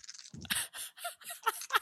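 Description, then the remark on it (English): A handful of dice rattles and tumbles across a surface: a short burst of clattering clicks that bounce several times before settling, with no one speaking. “Okay, you need to play any dice pool game. If that's the sound that you like, any dice pool.”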